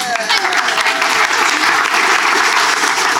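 An audience claps loudly and steadily, a dense wash of hand claps filling the whole few seconds without pause, with faint voices mixed into the crowd noise.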